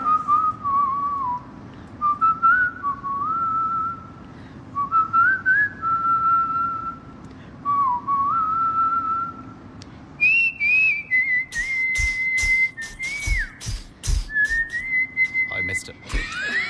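A woman whistles a catchy pop-style melody, phrases of sliding notes with short pauses between, joined near the end by sharp tapping or percussive clicks.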